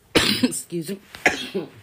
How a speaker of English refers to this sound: Excuse me. I'm trying my best to get through this whole thing without coughing. I'm so sorry.